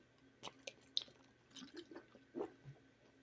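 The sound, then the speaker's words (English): Someone takes quiet sips of water after a long Bible reading, with a few soft wet gulps and mouth clicks spread over a few seconds, and no talking. “Excuse me, I had to have some water after that long reading.”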